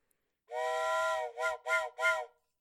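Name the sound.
steam train whistle blowing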